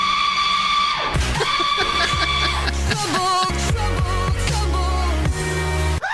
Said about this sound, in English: Oh, there's the goat. Yeah. I couldn't tell the goat from the automatic paper towel dispenser.